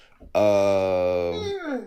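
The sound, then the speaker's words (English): A single loud, drawn-out dog howl holds a steady, slightly sinking pitch for over a second, then slides downward and trails off, heard alone without talking. “That wasn't even my motherfucking dog, goddamn it.”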